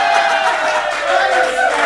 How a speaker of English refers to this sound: And the only way we can find out is from you guys via round of applause. So for Team Demons, if you think they're a worse club, can you give them a round of applause?